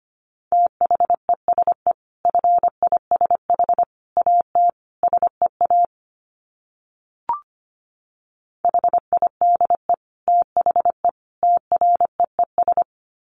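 Morse code dits sent at 25 words per minute: rapid bursts of a steady mid-pitched beep keyed on and off in quick short pulses, arranged in groups, with a pause and a single faint click before the pulsing resumes.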